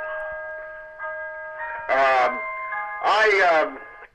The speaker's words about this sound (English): That was my clock. Yes, well, do not ask for whom the bell tolls.